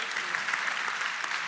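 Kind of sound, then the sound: crowd, audience cheering and applauding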